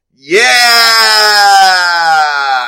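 A game timer start sound for a 22-minute clock: a loud, bright horn-like tone that swoops upward, then holds steady for about two seconds, heard on its own with no talking.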